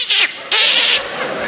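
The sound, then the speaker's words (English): A voice imitates an angry cat's hiss: two sharp, breathy hissing bursts, the second longer and louder, trailing off into a softer airy rasp. No words are spoken. “As soon as the cat there, he hisses at me. Then he attacks.”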